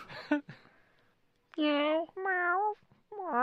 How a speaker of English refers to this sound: I believe I heard a cat. Oh, you did. Well, you either heard the cat or you heard my wife mocking the cat. One of the two.